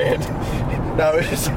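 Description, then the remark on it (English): A steady, continuous low rumble of road and engine noise from inside a moving car at highway speed on a freeway, with faint voices murmuring over the drone. “the good news is this time the car's working. Yeah, this time I'm actually moving. Because in transit, on the freeway.”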